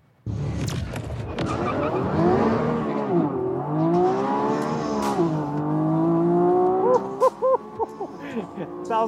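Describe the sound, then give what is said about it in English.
A Revuelto supercar engine revs hard and holds a loud, rising roar with warbling harmonics, tires squealing in a burnout as it pulls through, then ends in a few sharp blips and stutters. “Let's listen to this beauty purr.”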